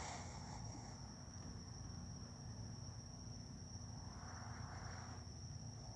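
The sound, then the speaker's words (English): A steady chorus of crickets chirping, a continuous high trill that never lets up, fairly faint and set against a low, rumbling background hum with no voices. “Oh, I hear the crickets too?”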